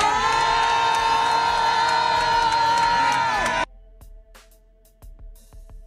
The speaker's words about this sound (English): Now, the Nigerians that are there, they are clapping over a white man doing something.